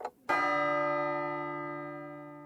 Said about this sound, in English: What they were waiting for was the clock to strike midnight, because at midnight, something unprecedented was about to happen.